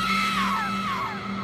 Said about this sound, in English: The first scream came from Chandra, high-pitched and shrill and piercing in its agony.